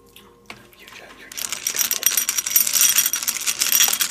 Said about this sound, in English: This is me playing with dice.